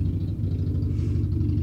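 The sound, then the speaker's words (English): A deep, steady engine rumble from heavy trucks passing outside fills the whole moment, a low droning throb with faint clatter on top and no voices. “There's the good old trucks.”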